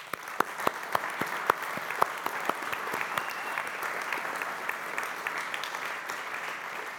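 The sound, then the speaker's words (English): An audience applauds all the mums present, with dense, sustained clapping that starts with a few sharp, distinct claps and swells into a steady wash of hands for several seconds. “And so I thought today it'd be really appropriate that we give all of our mums a big round of applause.”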